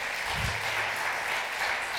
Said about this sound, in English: Let's applaud the Lord Jesus Christ on that one.